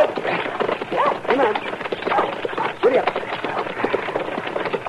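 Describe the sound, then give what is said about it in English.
Steady clip-clopping hooves of a horse pulling a buggy being driven through town, with rattling wheels and a rough outdoor din, while voices talk over it. “Yeah, I probably should at the rate you were driving that buggy through town.”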